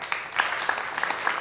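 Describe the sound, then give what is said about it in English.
A crowd applauds steadily, a dense wash of many hands clapping at moderate volume, with no pauses across the short stretch and a few sharper claps standing out, welcoming a young boy to the stage to perform the hymn Amazing Grace. “Oh, he gets the applause, does he?”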